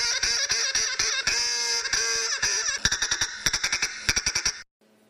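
A duck quacks loudly and nasally in a rapid, nearly continuous stream that breaks into a quick run of short, sharp quacks before stopping abruptly. No one speaks.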